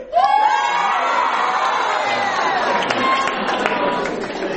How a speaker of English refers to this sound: And finally, make some noise for God's holy chicken, Chick-fil-A.